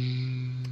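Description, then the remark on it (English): A voice hums a low, steady buzzing drone in imitation of a lightsaber, held at an even pitch and moderate loudness for under a second with no words. “Is the sound that you're making supposed to be like the sound of the lightsaber?”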